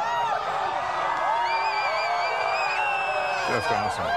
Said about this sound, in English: You no longer need these safety glasses. People are cheering. We have been told it is a spiritual moment, a hair-raising moment.